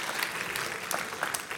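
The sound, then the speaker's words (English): An audience gives a big round of applause for a speaker's great work, a steady, dense wash of many hands clapping at an even, moderate loudness for the whole moment, with no one speaking over it. “Let's give Gary a big round of applause and for the great work that he does.”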